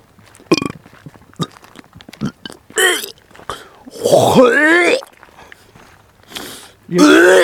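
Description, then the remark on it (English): A long, loud, gurgling burp rolls out with a rising and falling vocal tone, preceded by scattered clicks and small throaty sounds, then a second strong belch bursts in at the end. “That's a very spicy burp, son.”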